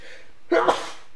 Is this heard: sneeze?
yes